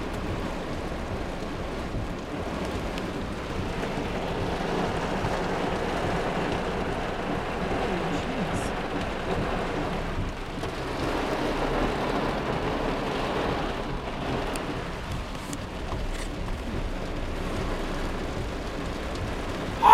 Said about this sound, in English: R-A-I-N. Rain.